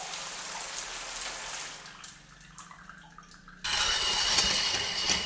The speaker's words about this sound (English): Taking a shower.